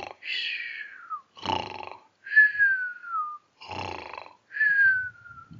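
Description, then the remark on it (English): A voice imitates a sleeper, alternating three falling, breathy whistles with two rough, rumbling snores in a steady rhythm, fairly loud. “And down the hole they went, and there was Hobyahs all snoring away, snoring and whistling away.”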